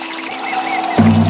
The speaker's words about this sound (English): I hear the water.